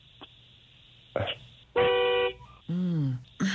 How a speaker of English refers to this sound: Can you honk the horn for me, Randy?